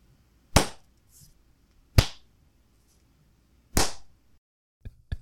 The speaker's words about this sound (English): Hey, you know what I'm going to do is I'm going to clap. I too will clap.